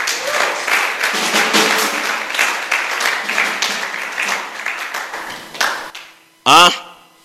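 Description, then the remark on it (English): A church audience claps and cheers for God for several seconds, a dense wash of applause that fades out, followed by a brief loud rising tone near the end. “Can you give God a little clap of freedom in the church?”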